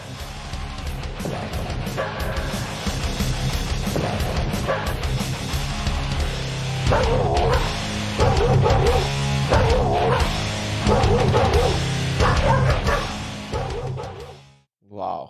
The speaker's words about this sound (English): And the dogs were barking on cue, like with the beats and like that was...